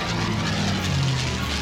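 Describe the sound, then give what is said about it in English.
A propeller airplane engine drones steadily in flight as rain is about to start, a continuous low, humming roar with a slightly wavering pitch and no voices over it. “I knew flying in the rain was dangerous, but I also knew that it wasn't raining yet, so...”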